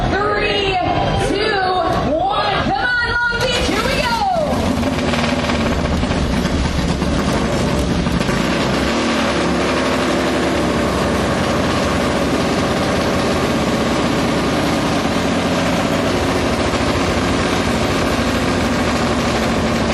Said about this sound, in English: Okay, so come on over to the Indian motorcycle display, guys. We're going to fire up this one-of-a-kind 1920 Monroe Special.